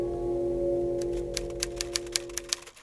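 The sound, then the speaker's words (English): Typewriter keys strike in a quick, slightly uneven run of about eight or nine sharp clacks as someone types up the previous night's notes, starting after a moment of steady low hum that continues underneath. “Typing last night's notes, I see.”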